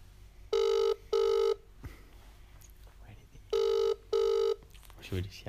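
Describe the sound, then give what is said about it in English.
A telephone ringback tone on an outgoing call to a contest winner: two double rings, each a pair of short, steady, low-pitched buzzy tones, separated by a pause of about two seconds, with faint background noise between. “We'll give him a bell.”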